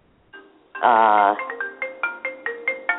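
A phone ringing in a fast, steady run of bright electronic chirps, clear, following a short loud rough burst at the start.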